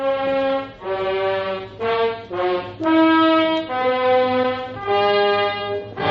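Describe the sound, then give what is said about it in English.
A ship's alarm horn blares a false alarm in long, loud, harmonically rich blasts, about six of them in steady succession with brief dips between, each holding a slightly different pitch. “Didn't you hear the alarm?”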